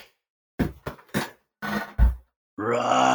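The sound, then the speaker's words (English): A series of short, rough growling lion roars from the opening logo of the film No Time to Die, two or three quick bursts, then a longer deep roar, followed by a sustained swelling tone like the start of music. “Solid lion.”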